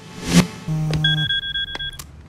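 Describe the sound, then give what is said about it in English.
An electronic telephone ringtone sounds alone for an incoming call from the CEO of a supplement company, a short burst of steady, bright beeping tones over a low hum, with a couple of sharp clicks and no one speaking. “gets a phone call from the CEO of the supplement company.”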